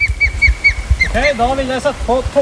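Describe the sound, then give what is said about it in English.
An osprey gives a rapid string of sharp, high whistled alarm notes, five or six in quick succession, as people stand beneath its nest in the Trøndelag region of Norway, before a low, muffled voice takes over in the foreground. “It makes a call when it's worried, because the lead people in our group are now under the nest.”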